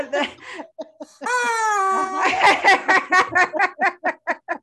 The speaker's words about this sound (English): And one of the great features about your new space is it has a torture workout space. It does. With our friend, the rubber chicken.